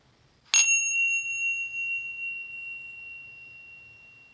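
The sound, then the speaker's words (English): A single meditation bell is struck once during a guided meditation, then rings out with a clear, high, sustained tone that slowly fades over several seconds amid quiet. “Letting the breath deepen as you hear the sound of the bell.”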